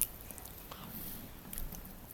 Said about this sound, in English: Let me just take a quick sip. Excuse me.